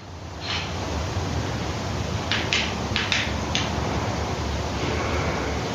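Several short, sharp flashlight clicks, some in quick pairs, sound at irregular moments over a steady hiss of background noise. No one speaks.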